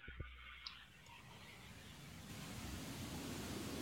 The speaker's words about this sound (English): That's not static. That's the rain.